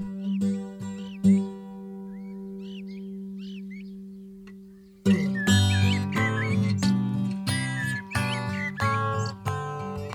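High, quick bird tweets flicker over a steady low drone, heard in stereo at different points in the mix, then plucked guitar music kicks in midway, with further chirps scattered through the busy accompaniment.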